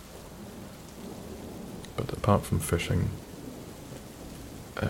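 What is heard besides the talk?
rain and thunderstorm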